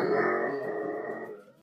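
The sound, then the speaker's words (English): A dog lets out a sustained growl, a rough rumbling sound that holds steady for over a second before fading out. No one speaks. “Bad dog.”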